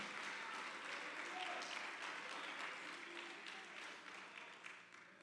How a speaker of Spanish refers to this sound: Denle fuerte aplauso al Señor con el corazón.